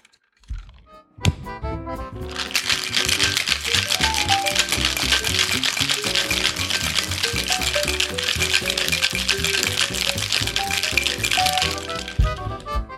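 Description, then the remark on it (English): Ice cubes rattle hard inside a cocktail shaker, given a good shake while mixing a cocktail with grenadine, in a fast, steady rhythm for about ten seconds, a loud bright clatter after a brief clink at the start, with no talking. “All that's in the shaker, and I'm going to add some ice to the shaker. And give that a good shake.”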